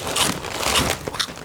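Crisp crunching of burger-flavoured puffed chips shaped like little men being chewed, with a few bright bursts of crackle spread across a moment of otherwise quiet mouth noise.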